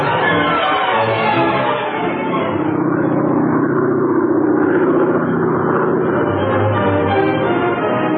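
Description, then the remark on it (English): A hired car's engine hums steadily as it drives from Havana to the small seaside town of Cardenas, a continuous loud drone with a low rumble that rises slightly in pitch midway, heard alone without voices. “arrived in Havana, then hired an automobile and drove to the small seaside town of Cardenas.”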